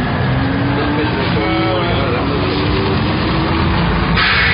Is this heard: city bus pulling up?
yes